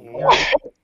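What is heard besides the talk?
sneeze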